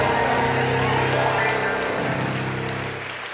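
A game show audience claps steadily for a contestant who has just won, a dense patter of hands that holds for a few seconds and then begins to taper off, with a low hum underneath.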